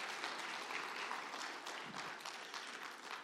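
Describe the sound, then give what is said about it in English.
A church audience applauds a woman steadily, a dense wash of many hands clapping at an even, fairly loud level for a few seconds with no voices over it. “Can we give her a round of applause for that?”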